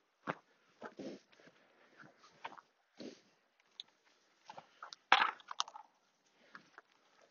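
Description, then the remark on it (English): A single sharp, hard knock of an object thrown from a distance striking a wooden telegraph pole rings out partway through, standing above scattered softer taps, rustles and clatters. No one speaks. “Well, managed to hit the actual telegraph pole from a distance there.”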